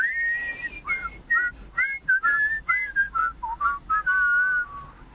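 A person whistles a cheerful pop melody, a bouncy run of short clipped notes ending on a longer held tone, with no talking over it.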